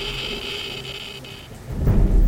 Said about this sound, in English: And obviously we're having radioactive rain.